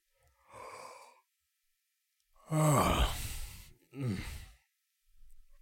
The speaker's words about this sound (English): The long and short of what I'm saying is that you feel very sleepy. I think as he buckles back up, gives a big yawn.